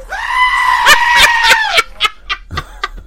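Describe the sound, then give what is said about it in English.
A goat lets out one long, loud, wavering bleat that sounds almost like a human scream, followed by a few short clicks and rustles. “You know that's a goat, by the way?”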